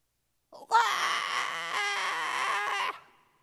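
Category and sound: sound effect, newborn baby crying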